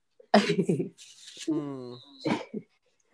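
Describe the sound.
A child blows his nose: a couple of rough, noisy snorting bursts of breath, a short voiced whine in between, then a final quick blow.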